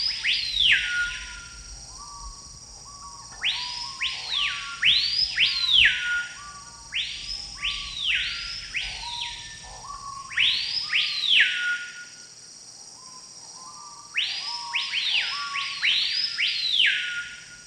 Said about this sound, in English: The trees here are in misery, and the birds are in misery. I don't think they sing, they just screech in pain.